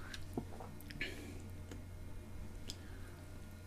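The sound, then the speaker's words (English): Quiet sipping of milk by a man taking one sip, then going back for another: a few soft wet slurps and lip smacks come at irregular intervals over a low steady background hum, with no talking. “He's taking one sip, he's going back for another.”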